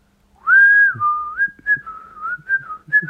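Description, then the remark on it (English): A person whistles, a clear, fairly loud tone that holds steady and then wavers through a few short gliding notes, with no talking over it. “The more I think of it, the more I want to actually learn to whistle.”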